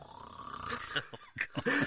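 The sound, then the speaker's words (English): A snoring sound effect, pasted in for a man who fell asleep during a séance: rough, guttural rasps with a clicking, fluttery texture, building over a couple of seconds into several choppy bursts, with no voices. “Effects of a snore pasted in here.”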